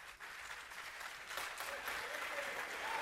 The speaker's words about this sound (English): Yeah, let me get my applause.